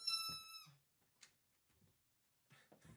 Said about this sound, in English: And by the way, if any of you guys were wondering what I just stepped on my dog's squeaky toy.